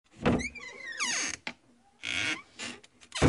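A door creaks open with a drawn-out squeal, then several loud thumps and rattles follow as it swings and shuts while two hosts walk out, with no voices.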